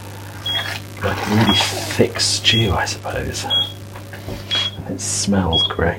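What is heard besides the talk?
oven timer beeping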